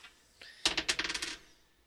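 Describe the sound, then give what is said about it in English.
A small six-sided die clatters onto a hard surface, rattling through a quick series of bright clicks that tumble rapidly and then settle to a stop. “thinks he knows the sound of every dice. Was that a 1d4? No, it's a 1d6.”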